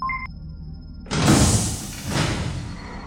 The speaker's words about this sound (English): All right. So a door's just opened in the wall over there.